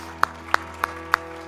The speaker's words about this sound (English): Now we just give the Lord a clap and just thank him.